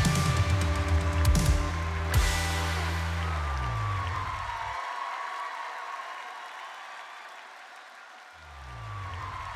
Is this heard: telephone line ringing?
no